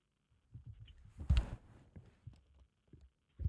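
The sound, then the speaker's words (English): A clothes dryer runs at home with a low, muffled hum and irregular soft thumps as the load tumbles, plus one brief louder clattering bump partway through. No one speaks. “Okay, I just had to turn off the dryer, or else it was going to beep the entire time.”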